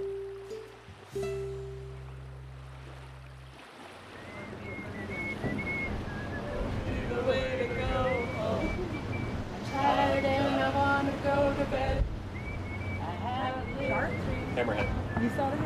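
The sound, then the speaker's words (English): A boat pulling out of Honolulu Harbor, Hawaii, out onto the open ocean: a low, steady engine drone opens, then gives way to a continuous rush of wind and water, with faint high whistling tones and indistinct voices. “When we were pulling out of Honolulu Harbor, that's when it was like, okay, it's starting. Then all of a sudden it's just like open ocean.”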